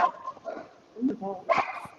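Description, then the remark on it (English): A dog barks and yips in a few short, uneven bursts, moderately loud, with whiny tones between the barks. “Tori Wilson, come get your dog, babe.”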